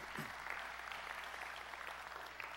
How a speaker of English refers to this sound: Hey, would you give the Lord a hand clap of praise for his faithfulness this morning?